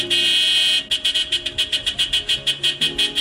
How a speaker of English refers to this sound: The blaring sound of the car horn brought me back to reality, and it was then I noticed I was almost at Osborne.